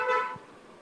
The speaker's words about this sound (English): Somebody's honking. Looks like a very busy car. Yeah. What seems to be an empty road right now.